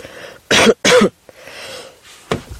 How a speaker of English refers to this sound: Sorry about that. I think my cold is now a cough.